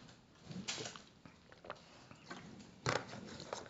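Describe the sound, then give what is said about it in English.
Someone sips orange juice: quiet, wet mouth and swallowing noises with two sharper bursts, and no one speaking. “So I'm going to take a sip of orange juice.”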